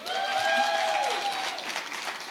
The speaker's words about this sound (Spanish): Ok, les voy a explicar por qué están aplaudiendo.